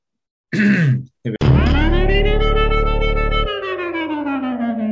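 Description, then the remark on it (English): A rough, gravelly throat clearing with a quick follow-up rasp, then a long, steady voiced groan that slowly shifts in pitch for several seconds. No words are spoken. “Cleared my throat there.”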